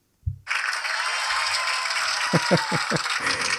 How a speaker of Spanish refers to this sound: Son los aplausos de nuestra audiencia virtual que nos escuchan en diferentes países.